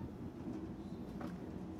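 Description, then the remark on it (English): Steady low rumble and hum of a moving train carriage, a continuous rolling drone with faint rattles and a brief higher squeak near the end, heard from inside. “It's so nice being on a train.”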